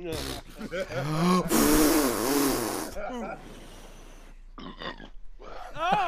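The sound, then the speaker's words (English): A loud, drawn-out burp made into a game controller rumbles for over a second, its pitch wobbling, with brief vocal sounds before and after it. “God, he burp into the controller.”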